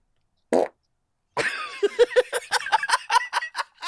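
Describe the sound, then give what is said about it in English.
A short blurt of air, a pause, then a long, loud, sputtering fart that breaks into rapid fluttering pulses, with no talking. “I love a fucking good fart.”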